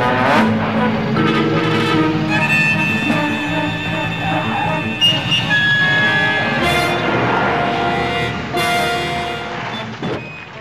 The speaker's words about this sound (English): See, like, it's got, like, jangly country banjos, and he's got a cowboy hat, and he's in a car doing fucking, you know, jumps and stuff. Yeah, yeah, in a stolen police car.